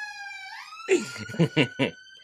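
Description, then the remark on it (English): A siren passing outside wails steadily, its tone sweeping upward early on, then holding as a man's voice talks over it in short bursts. “Every time I mention any of these guys, there's a siren behind.”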